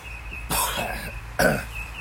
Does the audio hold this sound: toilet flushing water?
no